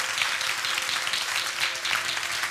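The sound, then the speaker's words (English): An audience claps their hands together in response to a call to clap, a dense, steady wash of clapping with a loose rhythmic pulse running through it, sustained throughout with no clear voices. “Oh, clap your hands, all ye peoples.”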